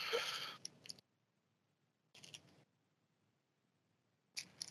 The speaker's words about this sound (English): Do you know why I try to remember to do that and like shuffle the cards like that? Because sometimes people pay real attention to breaks so they can try to figure out